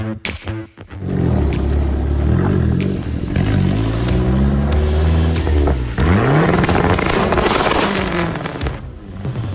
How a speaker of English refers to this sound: Those car sounds were just sent in by Bailey. That is his big turbo Dodge Neon SRT4.